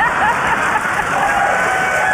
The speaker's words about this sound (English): Whoa, the guy. He's wooing. Getting applause now.